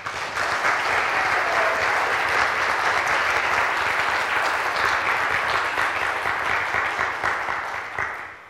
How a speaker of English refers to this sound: And so if you like what you saw this morning with the skit and the testimonies and the student sharing and all of those things, how about give your students a round of applause?